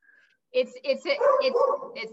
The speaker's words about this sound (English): Sorry, of course, because it's COVID, I have a dog barking in the background.